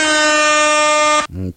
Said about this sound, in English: Air horns.